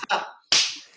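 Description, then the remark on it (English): A single sharp hand clap cracks out and fades quickly, following a shorter, softer burst of sound; no one speaks. “No, I clapped.”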